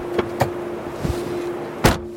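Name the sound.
car door closing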